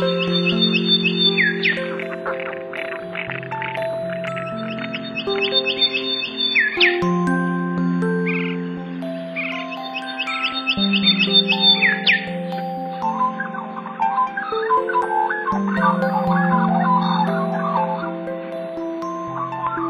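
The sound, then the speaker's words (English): Bursts of high, rapid bird calls repeat every few seconds, layered over steady, sustained musical tones that play throughout, with no voices. “Because of the bird's preferred habitat, you generally have to go out of your way to hear it.”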